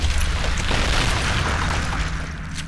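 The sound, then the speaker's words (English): A deep, heavy boom of an underground mine ramp collapsing in Chile rolls into a loud, continuous rumbling roar, thick with low-end crashing that holds steady for a few seconds before easing slightly. “He didn't realize it at first, but that sound he heard was the collapse of a ramp that was the only way to the world above.”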